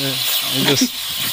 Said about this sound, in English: The dog was thirsty. That's how he drinks. Look at that. It's like he's biting the stream. I actually trimmed this down. This went on for like about a minute here of him just enjoying the water.